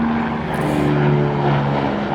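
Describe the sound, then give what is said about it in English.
A steady, loud engine drone with a low rumbling hum fills the whole stretch as a helicopter passes overhead, with no voices over it. “There's a helicopter.”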